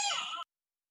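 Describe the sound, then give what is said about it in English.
A single short cat meow, bright, cutting off abruptly after about half a second with silence following and no talking; the male cat is outside a room door, tearing up the carpet because he wants to come in. “He's tearing up the carpet outside my room because he wants to come in, but I'm too allergic to let them into my room.”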